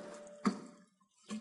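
Water is poured onto a newly planted seed while gardening, in two short splashing bursts, fairly quiet, with a faint hum in between and no voices.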